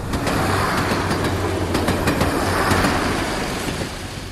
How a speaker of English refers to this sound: We're now about 5 minutes or whatever, 10 minutes from Ypres. We're just on the train, and we're just about to come up to and go through Hill 60, which was one of the most hotly fought over places around Ypres because of its height.